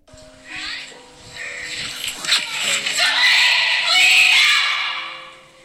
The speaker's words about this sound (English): that's exactly how Abby's story scream sounded like